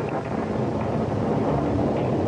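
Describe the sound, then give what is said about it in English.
A steady, heavy rumble of a thunderstorm fills the whole stretch, dense low-end roar with rain-like hiss on top, loud, no voices. “One minute, the storm seemed vague and remote, and the next minute, like another planet coming down through the roof.”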